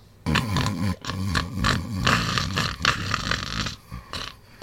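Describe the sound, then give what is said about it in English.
Loud, rumbling snores echo through a cave, a series of rough, throaty breaths with a gravelly low rattle, pausing briefly before another heavy snore, from someone who has breathed in snore spores. “He's already breathed in the snore spores.”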